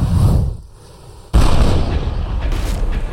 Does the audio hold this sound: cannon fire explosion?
yes